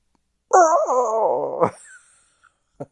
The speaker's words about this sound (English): That fucking scream.